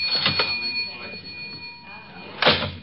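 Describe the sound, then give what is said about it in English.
A cash register being opened: a couple of quick mechanical clacks, a sustained bright ring, then a louder clunk as the drawer slides out, fairly distinct. “I got in the cash register.”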